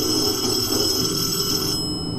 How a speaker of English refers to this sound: I can't tell if I'm getting closer to it or farther from it. Maybe it's in the principal's office? Who could be calling at a time like this? Perhaps I can get some help. So, yes, someone in the principal's office. There's the phone.